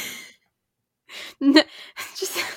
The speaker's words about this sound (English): It's yawning and teeth chattering hour. It finally kicked in.